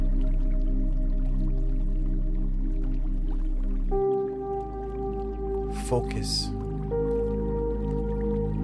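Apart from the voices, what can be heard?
dripping water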